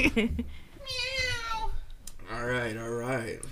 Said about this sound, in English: Meow. Give me fucking food.